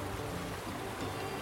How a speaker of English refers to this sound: And as the sun rises, it dissipates with the darkness. Just the river continues.